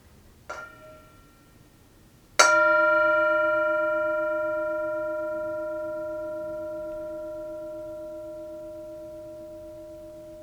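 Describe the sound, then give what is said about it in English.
A Tibetan singing bowl, used as a mindfulness bell, is tapped lightly, then struck firmly, its clear, shimmering tone ringing out alone and fading slowly over several seconds. “Enjoy the sound of the bell, of the Tibetan bowl.”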